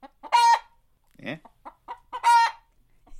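A chicken clucks, letting out two loud, strained squawks separated by a run of softer, choppy clucks, with no voices present.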